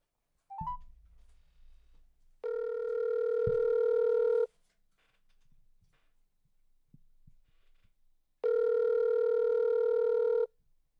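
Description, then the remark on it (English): A phone call rings out unanswered: two long, steady, buzzing ring tones about two seconds each, separated by a quiet gap, with a couple of soft thumps before the first ring. “Or she could be going to the bathroom because she probably wouldn't have answered then.”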